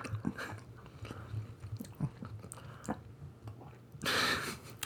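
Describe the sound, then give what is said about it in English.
Chewing pizza with vegan cheese, with wet, smacking mouth sounds repeating in an irregular rhythm, followed near the end by a louder burst of breathy noise like a sharp exhale. “Let's have 10 seconds of just chewing.”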